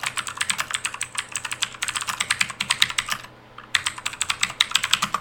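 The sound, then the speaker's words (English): Rapid, uneven clicking of fingers typing on a computer keyboard, sharp crisp keystrokes in quick bursts, pausing briefly for a moment before the typing resumes. No voices are heard. “Hold on, I'm going to pull this up on my computer so I can see it with bigger, so I'm not reading off my phone.”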